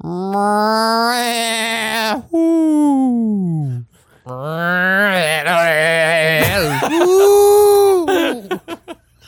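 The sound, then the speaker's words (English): A person vocally imitates a lonely animal cry: a drawn-out cat-like meow, then wavering goat-like bleating chatter, ending on a hooting, owl-like call, loud and unaccompanied. “started off sounding like a house cat, then it turned into something like goat chatter before ending on something like an owl.”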